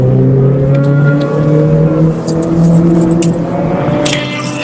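Formula F and Formula V race cars roar loudly around the COTA circuit in SCCA Hoosier Super Tour Race 1 on 2-5-22, engines holding steady harmonic drones that shift in pitch as they accelerate, with a sustained, dense engine noise throughout and no talking.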